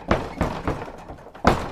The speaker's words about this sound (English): The door rattles louder.